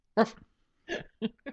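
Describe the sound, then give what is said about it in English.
A dog named Otto lets out four short barks in quick succession, the first loudest, with brief pauses between them and no one talking. “And our dog, Otto.”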